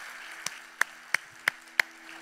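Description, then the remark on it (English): Five sharp hand claps land in a steady, evenly spaced rhythm, each crisp and bright, over a faint low hum with no voices, given as applause for the pastoral staff after they shared what God had done in them. “Would you give them a great big hand clap for them sharing what God's done in them?”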